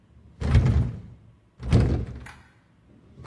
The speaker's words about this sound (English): Your door closes. My door.